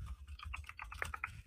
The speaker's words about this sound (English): I can hear you typing away.